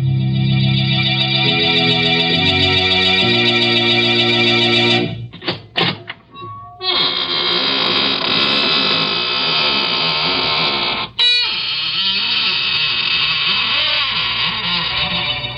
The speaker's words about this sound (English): Good evening, friends. This is your host of the Inner Sanctum, welcoming you again through the squeaking door for an hallucinating good time. Why am I smiling? But I always smile when I open the squeaking door on Tuesday nights.